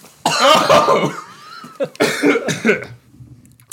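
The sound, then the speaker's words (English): A loud, rough burp-like vocal burst rumbles for about a second, followed after a short pause by a second, choppier burst that trails off into quiet. “No, dude, I just burped.”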